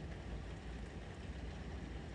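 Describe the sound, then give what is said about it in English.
A low, steady rumble of thunder, starting up while it rains outside, fills the whole stretch, deep and continuous with a faint hiss above it, holding an even loudness without sharp cracks or breaks. No one speaks. “It's raining outside right now, actually, and it's kind of starting to thunder.”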